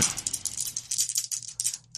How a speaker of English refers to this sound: Whoa, twice as much? Well, I rolled the damage dice twice.